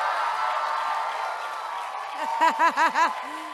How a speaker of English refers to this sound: Do it. Y'all cheer him on. Cheer him on. Cheer him on.